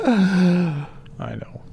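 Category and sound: human body sound, gasp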